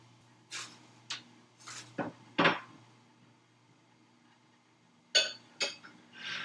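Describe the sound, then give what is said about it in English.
Bowls are taken out and handled, giving a series of sharp ceramic clinks and knocks, some ringing briefly, spread unevenly over a few seconds against a low steady hum, with no talking. “Silverware is put away. Let's grab these bowls.”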